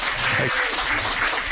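An audience applauds, a dense, steady wash of many hands clapping together at an even loudness throughout, with faint voices murmuring underneath.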